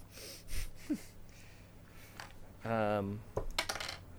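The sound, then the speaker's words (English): Dice clatter onto a tabletop for a damage roll in a tabletop game: a handful of sharp clicks spread over a few seconds. A short hummed vocal sound comes in near the end. “I rolled the wrong dice, so that doesn't actually matter.”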